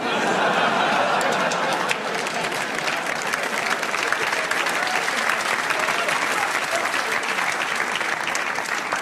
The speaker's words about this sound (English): Everybody who claps loves freedom. Good for you.